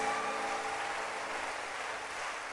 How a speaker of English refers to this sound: Keep clapping, don't stop.